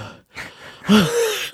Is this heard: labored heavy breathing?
yes